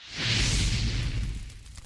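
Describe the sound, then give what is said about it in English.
A soft, breathy whoosh swells quickly and then slowly fades over about two seconds, with a low rumbling roar underneath, like a campfire catching as it is lit. No one speaks. “That brings us to our guest and our campfire conversation. Let's light it up.”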